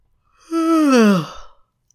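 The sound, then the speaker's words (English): A single drawn-out yawn, voiced and sliding downward in pitch, lasting about a second before trailing off into a breathy exhale. Moderately loud, with no talking over it. “That yawn is absolutely not indicative of how I feel about this case.”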